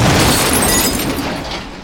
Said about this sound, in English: And he drives the pickup truck off the cliff in what I think is a great looking car crash.